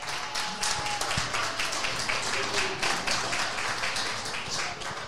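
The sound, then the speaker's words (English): An audience gives a round of applause for a female guest, thanking her for joining; a dense wash of many hands clapping at once that holds at an even level for several seconds. “Can we give her a nice round of applause?”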